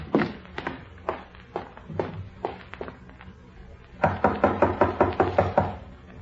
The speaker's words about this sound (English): When there was no answer to their knocking, they opened the door and stepped into the room together.